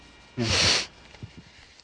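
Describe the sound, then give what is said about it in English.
A man gives one loud, sharp sniff lasting about half a second, a hissy rush of air drawn through the nose, followed by a few faint, brief noises. “He just sniffs.”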